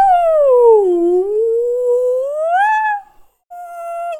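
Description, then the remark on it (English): A person imitates a whale call with a long, loud, sliding hoot that dips low, swoops back up, breaks off, then returns briefly on a steady tone. “Well, let's hear your best whale impression then.”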